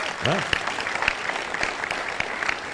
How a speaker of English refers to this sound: Let's clap for the word of God.